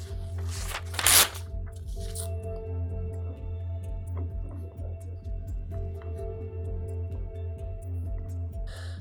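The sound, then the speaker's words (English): A sheet of paper crinkles and rustles in one short burst near the start, followed by quieter faint handling noises over a steady low hum. “Can I have a piece of paper?”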